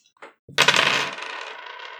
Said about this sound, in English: I think I'm going to re-roll the dice completely. Okay, go for it.